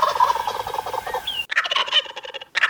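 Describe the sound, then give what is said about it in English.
Turkeys gobble in a loud, rapid, warbling chorus, one burst running into another with a brief break before a final outburst, with no talking. “I see, the two of you would like to start a lobbyist group to have all turkeys pardoned for Thanksgiving week.”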